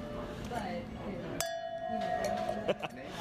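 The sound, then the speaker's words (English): Wine glasses clink together in a toast: one bright strike that rings on with a sustained tone, followed by a lighter tap, while people murmur in the background. “Come on. Cheers. Cheers.”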